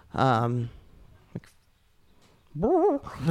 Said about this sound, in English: Just heard the dog in the distance.